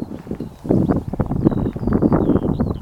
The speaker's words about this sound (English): So yeah, you can hear, I assume that's skylarks. We've had robins on the way up, wagtails. But yeah, that sounds like skylarks, doesn't it?